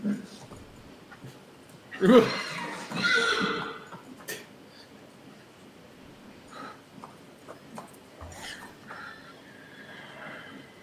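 horse neighing and whinnying

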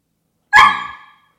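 dog barking

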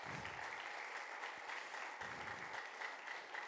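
audience hand clapping

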